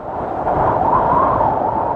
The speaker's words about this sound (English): We can still hear this when we go to a mountaintop. We hear the wind whistling across bare rock.